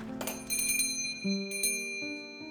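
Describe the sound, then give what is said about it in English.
The small bell over the door of Madame Ona's Shoppe of Curiosities rings several times in quick succession as someone enters, bright metallic chimes overlapping and ringing on clearly, with no voices. “Blair found the small bell over the door quaint and musical as it announced her arrival.”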